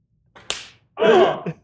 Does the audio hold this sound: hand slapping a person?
yes